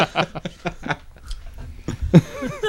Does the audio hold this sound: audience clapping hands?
no